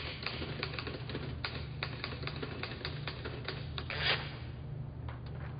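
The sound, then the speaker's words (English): Rapid, uneven keystrokes clatter away on a QWERTY keyboard, a steady stream of crisp clicks over a low background hum, with no voices. “QWERTY keyboard, how do you plead?”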